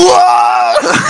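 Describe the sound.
A single loud scream of terror, performed by one voice, holding a shrill sustained pitch for under a second before breaking into a rougher, ragged cry.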